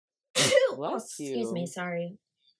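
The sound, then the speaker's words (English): A single loud sneeze bursts out, then a stretch of voiced, groaning vocal sounds trails after it before fading to silence. “God, I gotta sneeze.”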